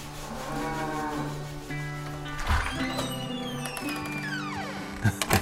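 A cow moos in long, drawn-out calls with a falling pitch, steady in volume, followed by a few short knocking sounds at the end.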